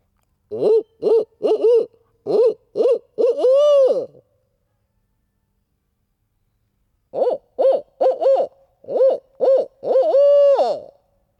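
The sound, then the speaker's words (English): A man's voice imitates a barred owl's call: two loud phrases of rhythmic hoots, each ending in a drawn-out, wavering 'hoo-aww', separated by a few seconds of silence. “Maybe you could tell that that was not a real barred owl.”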